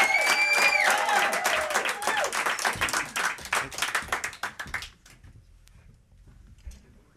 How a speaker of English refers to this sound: You can clap louder than that and faster.